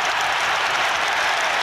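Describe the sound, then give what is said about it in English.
A loud, steady roar of a big football crowd cheering a first-half goal by Wijnaldum for Newcastle, a dense wash of voices and clapping with no single voice standing out, holding at full volume throughout. “Okay, so the first half continued, and then there were some cheers because this happened.”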